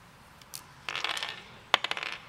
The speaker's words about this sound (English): And then I'll just start rolling some dice.